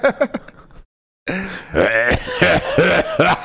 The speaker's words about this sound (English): Bro, you cough every single day.